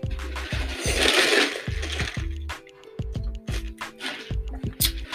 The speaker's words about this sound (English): Let me take a sip of this lemonade right quick.